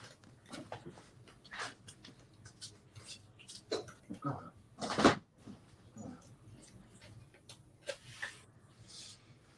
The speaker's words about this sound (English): If you just wait there 1 minute, I've just got to open the door for my dog. 1 second.